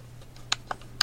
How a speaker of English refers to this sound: Just pressing other keys to see what was going on.